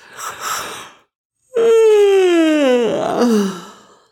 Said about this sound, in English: They slept for a very long time, and only woke up the next morning when the sun peeped over the mountain in the east. Mrs. Caldecott yawned as she began to wake up.